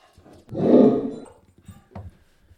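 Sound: dog growling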